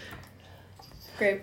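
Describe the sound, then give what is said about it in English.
After a stretch of near silence, a single short cough from someone with a lingering cough they can't get rid of, with the hint of another sharp vocal burst starting right at the end. “And my cough that I can't get rid of.”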